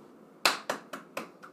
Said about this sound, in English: She's fucking getting her master's, guys. I am giving her a round of applause.